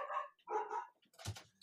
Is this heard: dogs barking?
yes